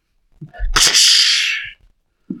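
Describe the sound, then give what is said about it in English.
A voice imitates a small handheld launcher, a bit more cylindrical than a crossbow, firing at birds in the air: a low puff bursts into a loud, breathy hiss that fades over about a second, then a short faint vocal sound. “you see him pull out a small handheld-looking thing, a little bit more cylindrical than a crossbow. And you hear a...”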